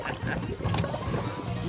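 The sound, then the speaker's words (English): A heavy, sustained rush of churning, splashing water as a car goes into a lake, loud, with muffled voices faintly mixed in beneath the turbulent sloshing. “You gave him the car to drive? No, not into the lake! Into the breach! It's a boat car, eh?”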